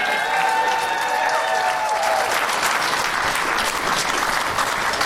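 A show audience applauds a first-time guest, with dense, loud, steady clapping throughout and a few whoops and cheers mixed in during the first couple of seconds.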